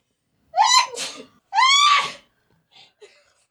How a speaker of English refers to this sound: Those are some dramatic ass sneezes.